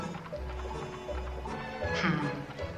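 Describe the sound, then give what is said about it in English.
A horse plods along with steady, rumbling hoof clops against a noisy outdoor background, and a brief whinny-like cry rises midway through. “I hope this stupid horse knows where he's supposed to go.”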